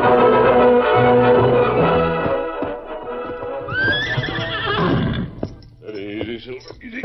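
A horse whinnies loudly, a long quavering neigh that rises and wavers in pitch, followed by a shorter whinny, with light clopping hoof sounds underneath.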